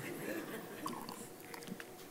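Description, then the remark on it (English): Someone drinking water: a few soft gulps and wet mouth clicks over a low, steady background hum, with no one talking. “Is this water for me? No one else has drunk this.”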